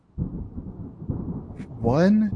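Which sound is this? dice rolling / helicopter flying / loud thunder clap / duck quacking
loud thunder clap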